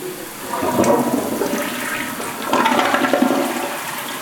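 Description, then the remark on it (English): A toilet in a hotel bathroom on the Strip flushes with a loud, rushing gush of water that surges twice before starting to drain away, with no voices. “And I'm flushing the toilet.”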